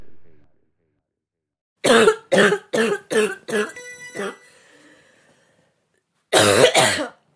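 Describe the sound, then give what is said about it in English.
A quick run of about five loud, harsh coughs from the audience, followed by a short pause and another burst of coughing. No one speaks. “I see y'all niggas are still coughing out there.”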